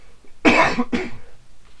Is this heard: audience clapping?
no